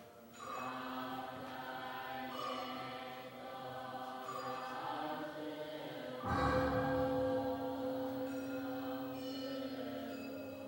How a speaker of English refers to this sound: But now, let's just listen for our last 5 minutes to the example of Chinese Buddhist music on our CD. There you hear bells and wooden, and the drum.